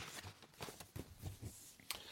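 Crackling rustle of a paper map, a Colomar Tribe Lands map, handled right against the microphone, with irregular crinkly bursts and a sharper snap near the end, no voices.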